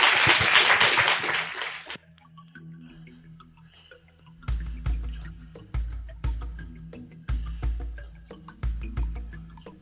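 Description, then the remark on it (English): A loud burst of audience applause at the February 2019 meeting of the Whitechapel Society fills the first two seconds, then cuts off, leaving a quiet gap before music with a steady, pulsing bass beat begins. “But could I have a big round of applause for Bob Hinton, please?”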